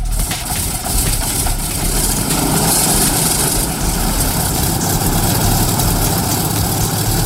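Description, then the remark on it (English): A loud, steady engine of an old propeller plane used for flights to remote parts of Colombia idles on the ground throughout, its low rumble and rough mechanical drone holding constant, with no voices. “He sees the work that these hulking great airships and their pilots do as daredevil humanitarian missions for the more remote Colombians.”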